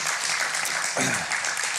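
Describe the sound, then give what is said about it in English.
A church audience applauds steadily, a dense wash of many hands clapping at once at a fairly even, loud level, with a brief low voice briefly surfacing partway through. “And I feel like, you can applaud that.”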